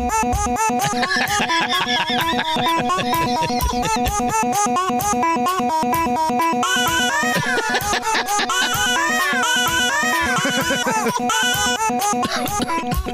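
A loud, driving rock track built from chopped coos and squeals of a newborn, recorded by the baby's dad over an entire year and remixed, the infant sounds pitched into a fast repeating riff over a steady pounding beat, with no talking.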